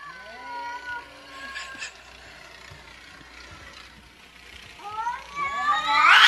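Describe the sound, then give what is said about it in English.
Cats on a porch, Smokey, a longer-haired cat, and Carbon, yowl and caterwaul in long, wavering cries: a drawn-out moan opens, then after a lull a louder, harsher screech swells and builds to a raspy climax. “So Smokey is the cat on the right here. He's a little more long hair.”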